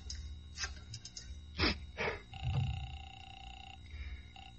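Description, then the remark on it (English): A telephone in a phone booth at a roadhouse is dialed for a long-distance call: a few soft clicks, two louder clattering bursts, then a steady electronic tone on the line for a second or so, without any talking. “I closed myself in. Dialed long distance.”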